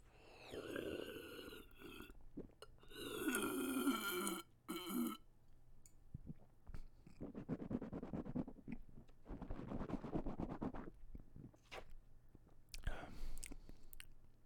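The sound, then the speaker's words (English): Wet slurping as a sip of Modelo Especial pilsner-style lager beer is drawn in, then a long stretch of swishing and sloshing in the mouth, with soft gurgles and a final swallow, no talking. “I will take a sip just now and then I'll explain to you my experience with this beer.”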